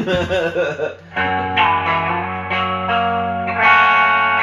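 An electric guitar plays loud, sustained chords through a Cambridge Reverb 30 amp with two pedals, a Love Pedal Super Sick Tone and a Gen 5 Echo, shifting to a new chord every second or so, with a washy, echoing effect smearing the notes together.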